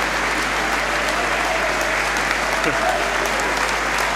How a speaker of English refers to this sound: So good to see Jordan Davis getting on the pitch again. And he's going to be replacing Elliot Lee. Wrexham fans stand to applaud.